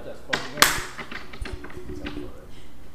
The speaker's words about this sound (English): Let me clap real quick. This is gonna be the thing.